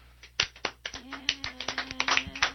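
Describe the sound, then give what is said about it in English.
Scattered hand claps quickly thicken into brisk, uneven applause from a small audience, sharp and fairly loud, with a steady low tone droning underneath throughout; the applause is for a band. “All right, let's hear a warm round of applause for the ….”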